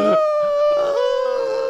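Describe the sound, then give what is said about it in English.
A person imitates a whimper: one drawn-out, high, nasal whine held steady for under two seconds, fairly loud, wavering slightly near the end, with no talking. “Is that a whimper?”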